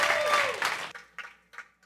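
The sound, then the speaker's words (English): A church audience breaks into loud, dense applause for the youth pastors and speakers, which stops abruptly after about a second, leaving two scattered, fading bursts of clapping. “All right, if you got expectation in your heart, one more round of applause.”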